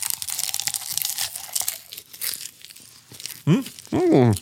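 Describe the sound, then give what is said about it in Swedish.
Loud, dense crunching of a big handful of popcorn being munched for about three seconds, crackly and irregular, then two short muffled voiced sounds, like someone talking with their mouth full. “Och så tror du att du har så mycket popcorn i handen, så det här kommer aldrig gå.”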